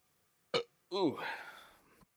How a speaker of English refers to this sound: Well, that wasn't satisfying for any parties involved. Half wet burp. Yeah, that Bang energy drink probably wants a refund on my gullet.